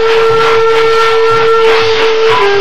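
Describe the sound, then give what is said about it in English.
A train brakes and slows as it arrives at Laramie, with a loud, sustained metallic squeal over a broad rumbling hiss and rhythmic low clatter of wheels, the pitch of the screech shifting slightly near the end. “The brakes are applied and the train slows down.”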